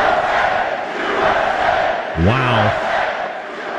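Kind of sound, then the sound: crowd, arena crowd cheering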